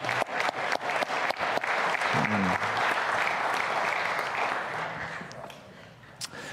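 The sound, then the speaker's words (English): Sustained applause from a large audience for the band, a dense steady clatter of clapping that holds strong for several seconds and then gradually thins out, with a brief murmur of voices mixed in. “Thanks to our band. We give them a round of applause.”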